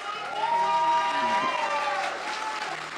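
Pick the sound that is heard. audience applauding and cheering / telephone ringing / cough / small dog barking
audience applauding and cheering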